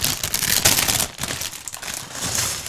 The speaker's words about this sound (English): Dumping a bag.